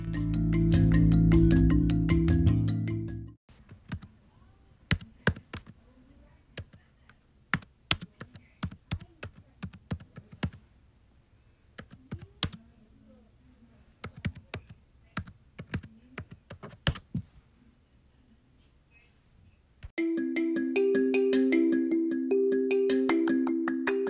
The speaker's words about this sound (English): I'll be right back after some intense keyboard clicking.